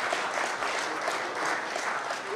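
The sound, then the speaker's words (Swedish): A crowd claps steadily in applause for Jesus, a dense wash of many hands applauding at even loudness throughout, with no voices standing out. “Kan vi inte ge Jesus en applåd?”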